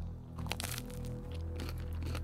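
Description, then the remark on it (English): Loud crunching as someone bites into fairy bread pizza for a first taste, with a few sharp crackly bursts early on and another cluster of crunchy chews toward the end, no talking. “Oh, hear that crunch.”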